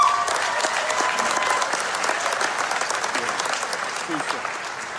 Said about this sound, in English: you give yourself a round of applause for what you've done.